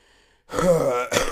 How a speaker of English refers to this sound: You just coughed directly into the mic.